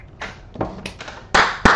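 A brief spatter of applause: a handful of sharp, irregular claps that grow louder toward the end, with no voices over them.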